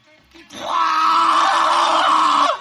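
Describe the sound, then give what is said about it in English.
A man, the band's drummer, lets out a long, loud, sustained roaring growl as his way of saying hello, lasting about two seconds, harsh and raspy like a monster or dinosaur, with a voice imitating a beast's roar. “That wasn't a dinosaur. That wasn't a pig.”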